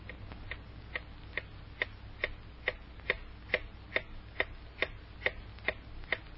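A clock ticks steadily and evenly, about two crisp ticks per second, each a sharp click standing out against a quiet, low background hum with no voices.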